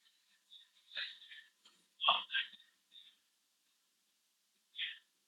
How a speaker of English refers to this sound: why don't we just keep on breathing deeply?